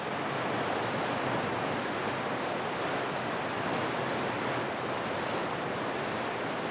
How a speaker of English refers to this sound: That's a waterfall you hear, a river below him.